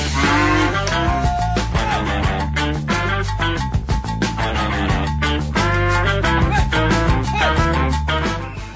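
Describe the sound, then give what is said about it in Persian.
Loud, drawn-out cow moos, one low bellow after another with barely a pause between them, filling the whole stretch with no talking. “یعنی عین گاو میمونن کلا این آدما.”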